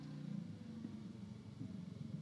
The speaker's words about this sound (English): And somebody got a motorcycle in my neighborhood.